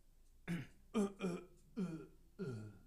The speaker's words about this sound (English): And they're like, oh, did you cough? I'm like, no. That was just a fake cough. That's just how I fake cough.